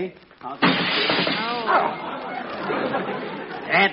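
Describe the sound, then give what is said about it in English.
A sudden loud crash of a doctor's very clean car window shattering as someone sticks their head through it, thinking it was open, followed by a few seconds of crunching, tinkling shards. A voice speaks briefly over the breaking glass. “Nobody's got any right to have their car windows as clean as that. I thought it was open.”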